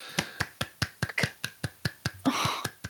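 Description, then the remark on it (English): A steady run of sharp hand claps, about a dozen in quick even rhythm, with a burst of breathy noise or a gasp near the end. “God's applauding.”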